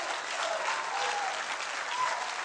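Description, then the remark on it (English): A church audience in Louisiana on a Sunday night claps steadily in a dense, continuous wash of applause, with faint cheering voices rising above the clapping now and then. “Come on, clap your hands and shout like you.”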